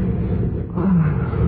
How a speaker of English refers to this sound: Oh, started to thunder.